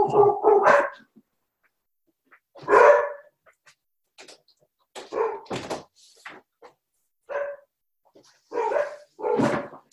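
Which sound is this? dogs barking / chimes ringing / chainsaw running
dogs barking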